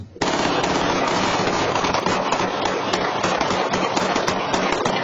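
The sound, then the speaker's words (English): A sustained burst of rapid gunfire, dozens of sharp cracks packed tightly together and running continuously for several seconds, loud and dense with no voices over it. It is the second barrage, about a minute after the first, at a private birthday party held at a home rented as an Airbnb. “So a moment ago, you heard one barrage of gunfire. This is the second that happened about a minute later.”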